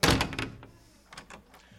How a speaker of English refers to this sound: Here, I'll be the big bad demon on the other side. Slam the door in my face.